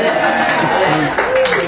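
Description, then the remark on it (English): A short burst of stand-up comedy audience applause at a mention of the town of Joliet, dense and steady, with voices calling out and cheering mixed into the clapping. “Wow, Joliet got applause for the first time in its life.”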